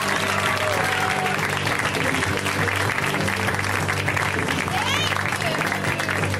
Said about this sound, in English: Thank you. Stop clapping!